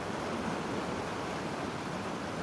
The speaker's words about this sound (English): towards the sound of the ocean. You could hear it, but you can't see it.